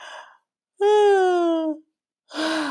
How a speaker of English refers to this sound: But this yawning is an amazing mechanical miracle of our body to pull in as much oxygen as we can into our brain. It's absolutely fantastic. So go ahead. I'm going to start yawning thinking about this.